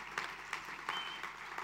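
An audience applauds steadily, a dense wash of many hands clapping at once with regular louder peaks, continuing throughout without any voices on top.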